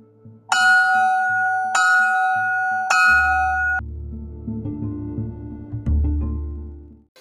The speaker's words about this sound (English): You better get to class before the bell rings.